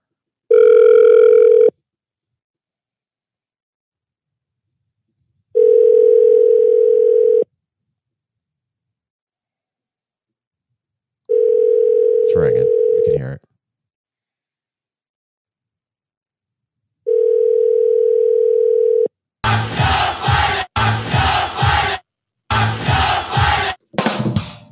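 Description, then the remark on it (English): Four long, steady telephone ringing tones sound on a late-night call to the Eastern time zone, each about two seconds with pauses in between, followed by a loud, chaotic burst of shouting and crowd noise. “And that's the phone call.”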